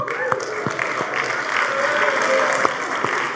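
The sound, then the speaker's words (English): A small crowd claps steadily with a few cheers and whoops mixed in, a dense, continuous patter of hands at moderate loudness lasting several seconds, applauding the seniors in the room, about seven of whom are present. “There's about 7 seniors in here tonight and 4 that were cheering for him.”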